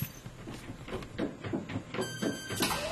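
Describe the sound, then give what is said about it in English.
A sci-fi machine door slides shut with a hissing, mechanical whoosh, layered with pulsing clanks and a steady electronic hum, fairly loud, with no one talking. “I wonder why the machine door closed.”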